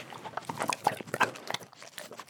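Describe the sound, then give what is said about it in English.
A short-haired white rescue dog with brown spots and floppy ears gobbles up treats greedily, with a rapid run of wet chomping, crunching and snuffling sounds, irregular and busy, no talking. “She gobbles up some treats, her ribs showing.”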